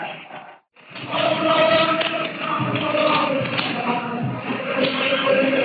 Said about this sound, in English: The applause that you hear are the well-known words, Sieg Heil, hail victory.